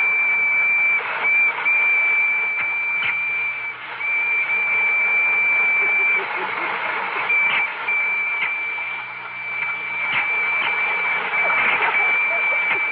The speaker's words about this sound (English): …, are the electric trains ready? Oh, I think they're all lined up. Well, start one up and let's see.